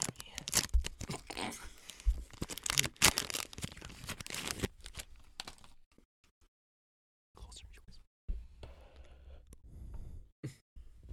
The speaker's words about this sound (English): We're going to be opening the Kind Breakfast Cereal Bar. This is the cinnamon with almonds with plant-based oat milk drizzle.